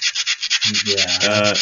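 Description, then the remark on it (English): Rapid, rhythmic rasping strokes of sanding, steady, about a dozen scrubbing passes; partway through, a low droning hum rises underneath and continues to the end. “Fuck off with your sanding.”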